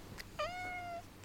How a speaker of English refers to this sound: Do you know what would add to this Christmas special? What? My cat crying into the mic. Hey, go on then. Let's see if I can make her cry.